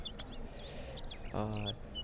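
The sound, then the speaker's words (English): A female pet bird sings a busy run of high, quick chirps and tweets, fairly loud, with a brief lower, tonal call or voice sound partway through. “My bird singing.”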